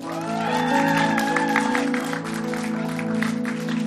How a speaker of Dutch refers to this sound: dus geef een applaus voor Christel